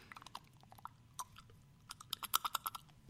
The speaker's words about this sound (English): Yep. Gotta swish it around a little. Oh, squish it between your teeth. I might as well clean my teeth while I'm at it.